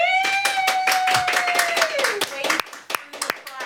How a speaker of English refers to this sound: I think you should all give him a round of applause.